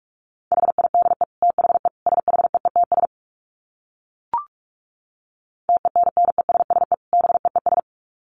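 Rapid Morse code at 45 words per minute: a single steady mid-pitched tone keyed in quick dots and dashes, two bursts separated by a pause broken only by a short click.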